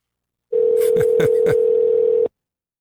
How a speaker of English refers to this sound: I think I'm calling the phone. I don't want to call the phone.